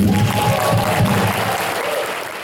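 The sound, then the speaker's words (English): A live show crowd in England applauds itself with dense, steady clapping that stays loud throughout and eases off slightly toward the end, with faint cheering mixed into the wash of hands. “So give yourself a hand.”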